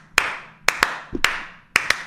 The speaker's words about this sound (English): They're doing the clapping, they're whooping.